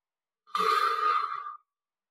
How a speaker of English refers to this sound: And wherever you are in your breathing cycle, let's do three breaths together, exhaling now.